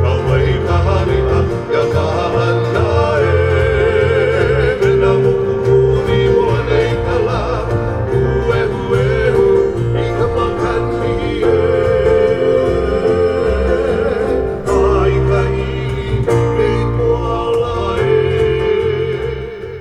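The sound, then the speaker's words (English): Hula chanting and singing by a group of hula dancers in a show, about Queen Liliʻokalani, Pele and love for the land, sustained and melodic, backed by steady low percussive beats like an ipu gourd drum, loud and continuous throughout. “And so this show is set up with hula dancers chanting and singing about Queen Liliʻokalani, Pele, the love for the land, giving aloha, and much more.”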